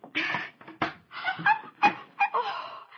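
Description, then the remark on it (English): A white puppy with one black ear yips and whimpers in a quick series of short, high-pitched cries, fairly loud, with no talking. “Mama, look. A real live puppy.”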